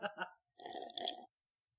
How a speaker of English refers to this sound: I hear that people don't like to hear slurping over really? The airwaves. Well, guess what? We're going to slurp more often.